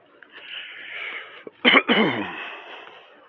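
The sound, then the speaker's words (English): A single forceful cough bursts out midway, preceded by a brief throat click and followed by a raspy, breathy exhale trailing off. No talking. “How's that cough? Is that a COVID cough?”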